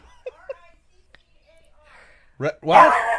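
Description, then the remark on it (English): A dog barks twice near the end, a short sharp bark followed by a louder, longer one, after a few faint, quiet chirping sounds and near silence. “And the dog's barking now.”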